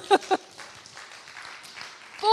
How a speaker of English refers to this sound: Isn't that good news? I think it deserves a little clap.